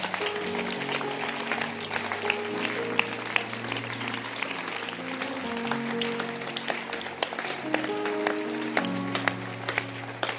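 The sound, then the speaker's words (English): A large audience claps steadily for about ten seconds in thanks to God for the life of Bishop Dagi Wadman, a dense, continuous wash of applause with sustained musical tones droning underneath. “Can you clap your hands?”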